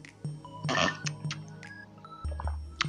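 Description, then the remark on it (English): Someone sips water: a short slurping burst, a few soft clicks and a low gulping swallow, ending with a faint wet smack, with no talking. “Take a sip of water.”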